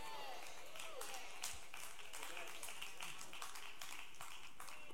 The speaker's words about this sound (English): You see those two hand claps out there? And no shouting, no nothing.